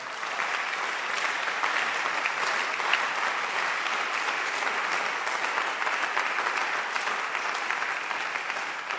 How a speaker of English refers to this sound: Clap your hands again.